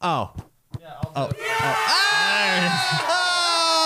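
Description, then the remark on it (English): Loud, excited yelling and whooping bursts out close to the mic, several voices overlapping in a sustained celebratory cheer after a few short shouts, celebrating an online community reaching 1,000 users. “You gotta stop yelling in the mic.”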